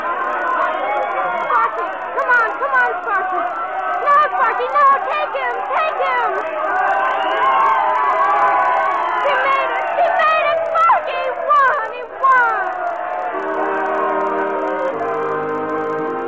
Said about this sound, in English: They were neck and neck, those fillies, when they came around the last turn. And suddenly the crowd came to life, all shouting and screaming as the horses flew past them to the finish line.